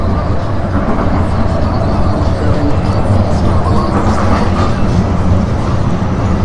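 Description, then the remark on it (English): A light rail train on the D line rolls past, a loud, steady rumble of wheels and motors filling the whole stretch without letting up. “That's the light rail going by, the D line, the mall buses are different than the light rail.”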